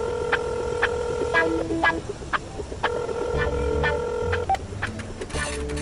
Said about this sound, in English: I'll dial her up. Alright. So, Allison, your phone starts ringing.